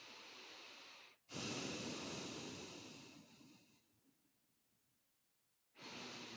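human body sound, deep breathing exercises

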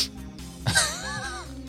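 human body sound, sniffing

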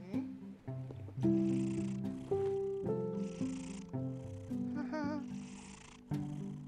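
animal, cat purring

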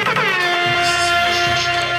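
signal or alarm, air horn blast

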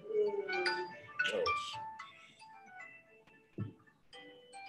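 signal or alarm, phone ringtone

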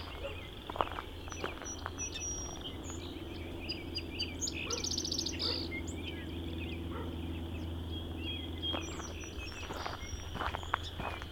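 bird, song sparrow singing

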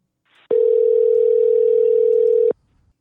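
signal or alarm, telephone dial tone

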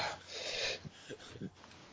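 human body sound, heavy breathing

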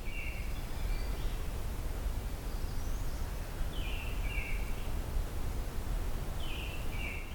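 bird, american robins calling

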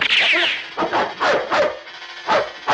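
animal, angry dog barking

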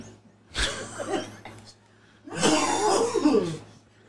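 human body sound, coughing

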